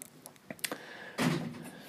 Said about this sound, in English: Door slamming in the background.